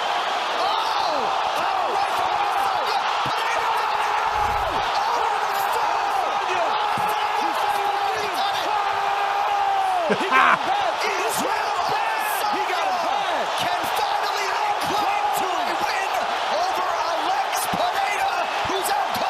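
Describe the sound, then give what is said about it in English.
A dense arena crowd roars steadily throughout a UFC fight, with a few sharp thudding blows landing amid the din as Izzy Adesanya knocks out Alex Pajeda to win back his middleweight title, muffled announcer voices underneath, peaking briefly in a louder burst near the middle. “Indeed, that was Izzy Adesanya knocking out Alex Pajeda to win back his middleweight title, which he has lost since when he was on the brink of defeat.”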